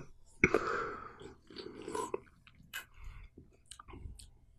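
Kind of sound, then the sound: food or drink, sipping a drink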